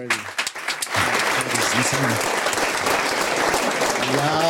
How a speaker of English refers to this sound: Yo, come on, man, get some applause.